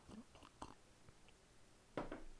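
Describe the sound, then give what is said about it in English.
A short, airy slurp from a cup follows a few small wet mouth clicks and sips. No talking, just the quiet noises of someone drinking. “Lift up your cups, and let's have our first slurp.”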